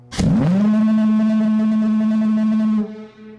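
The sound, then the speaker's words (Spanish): A lighthouse foghorn sounds one long, loud, low blast: a steady droning tone with buzzy overtones, holding for about two and a half seconds before cutting off abruptly. No voices. “Haré un sonido y un aparato y lo llamarán la sirena y quienes lo oigan conocerán la tristeza de la eternidad y la brevedad de la vida.”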